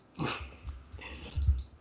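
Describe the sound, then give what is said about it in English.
A cat gives a short, quiet meow, followed by soft breathy snuffling sounds, with no one talking. “yes, Kitty, I know.”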